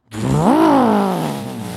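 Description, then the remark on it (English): A person vocally imitates the engine of a black muscle car, like a T-Bird or Firebird, with a loud, throaty rumble that rises in pitch, peaks, then settles into a long, steady growl. “And I look behind the car that we're in, and there's like this muscle car, like a T-Bird or Firebird or one of those bird cars.”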